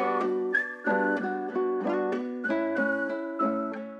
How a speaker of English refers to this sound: And there's the whistle hook, obviously, that sticks in your mind.